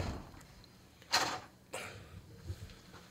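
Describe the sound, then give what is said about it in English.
A door is opened for an arriving guest with two sharp clatters about half a second apart, likely the latch and then the door swinging, over a quiet room hum with no one speaking. “can you open the door there for him?”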